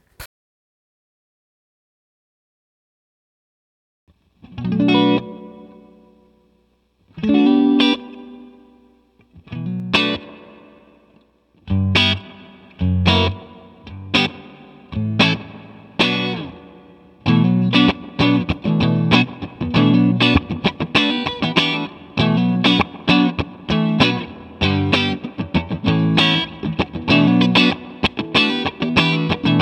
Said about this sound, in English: Almost spring reverb, ampy kind of reverb. I was just gonna say when I first heard it, it was like, okay, I've heard this before, and I kind of thought this originally. It's sort of a cross between a plate and a spring and an amp.